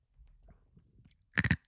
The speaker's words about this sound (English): So you just start chomping on nothing. I didn't know it was ice. It was a glass.